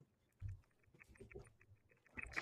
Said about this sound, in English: I'll give you a sample of what my keyboard sounds like on stream.